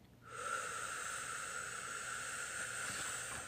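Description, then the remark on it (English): A person lets out all their air in a long, steady breathy exhale for about three seconds, an even airy hiss at a constant level that tapers slightly at the end, acting as a goldfish making bubbles in its bowl during a breathing exercise from the book I Am a Peaceful Goldfish. No voices are heard. “Then I let out all my air to make bubbles in my bowl.”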